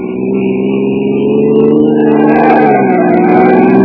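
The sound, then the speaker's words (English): A car engine roars at high revs, loud, its pitch holding steady and then climbing briefly as it accelerates hard while the car tears through town streets. “tearing through the streets with a killer at whom every cop in town was itching to get a shot”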